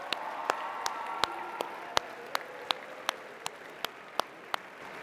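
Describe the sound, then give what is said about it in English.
An audience applauds for visiting families during a family weekend: a steady wash of many hands clapping, with sharp, evenly spaced claps punching through roughly three times a second. Moderately loud, with no talking over it. “Can we give them like a huge we love you round of applause?”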